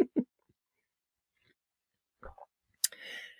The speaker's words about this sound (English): I'm taking a sip of my coffee and I'm not even going to edit it out.